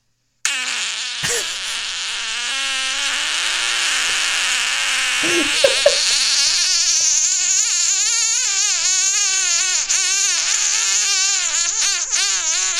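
A single very long fart runs unbroken for about twelve seconds, starting as a steady low rasp before wavering and warbling in pitch, almost tuneful toward the end. No one speaks over it.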